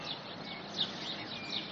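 Quiet rural outdoor ambience in the small settlement of Waiau: a soft, steady background hiss broken only by a few faint, brief bird chirps, with no traffic or voices.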